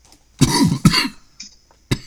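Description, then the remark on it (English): A person coughs hard twice in quick succession, loud, followed by a smaller throat-clearing sound and a final short cough. “While I cough and die, what's your first pick?”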